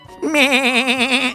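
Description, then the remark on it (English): A billy goat gives one loud, quavering bleat lasting about a second, its tone wobbling rapidly up and down, heard on its own with no talking. “Are you sure this is a girl and not a billy goat?”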